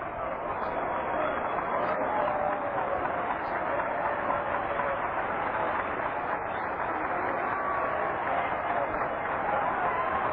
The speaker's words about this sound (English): And now a hand from this large crowd here today.